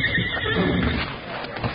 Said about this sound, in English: I hear your horses.